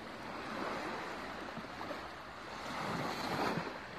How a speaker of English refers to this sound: So I hope you've enjoyed those waves.